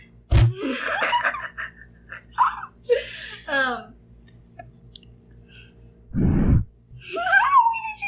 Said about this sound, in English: They're just gonna hear breathing in their ear.